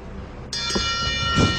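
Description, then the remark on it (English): A wrestling ring bell clangs sharply partway through to start a match and keeps ringing with a bright, sustained tone to the end, over a low rumble of arena noise. “He's going to jump you at the bell, okay?”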